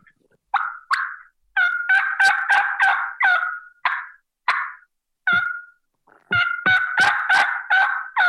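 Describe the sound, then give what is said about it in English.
A turkey call produces a series of light, short, sharp clucks followed by runs of light raspy yelps in quick rhythmic bursts, fairly loud, with no talking. “Just basic light yelping and little clucks, and then see how he reacts.”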